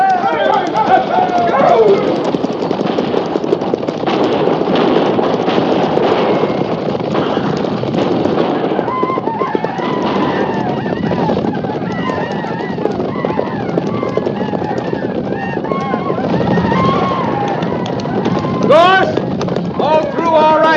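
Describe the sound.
A loud, dense thunder of many horses galloping together in a cavalry charge toward wagons, hooves pounding continuously, with shouting voices and a wind-like roar mixed through the rush.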